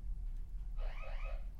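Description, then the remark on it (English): An electronic alarm starts sounding midway through, a warbling, rising-and-falling tone over a steady low background hum, fairly loud and with no one talking. “What alarm is that? What alarm could that possibly be?”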